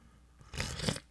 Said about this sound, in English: And here's to you. If you have your coffee mugs, your travel mugs, your sippy cups, your doggy bowls, if you have a beer hat and you want to drink it like that, then go ahead and do so and join me in this sip of cafecito.